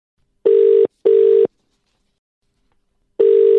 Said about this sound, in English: Can we get her on the phone? Let's give her a bell.